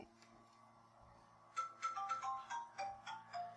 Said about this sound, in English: Now there's phone ringing. Is that my mom's? Yeah, I think so.